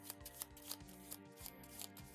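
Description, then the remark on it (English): A deck of cards being shuffled during a card game: a run of quick, papery riffles and soft rubbing bursts, fairly quiet, over a steady low tonal hum in the background. “Just wasting time shuffling for you all.”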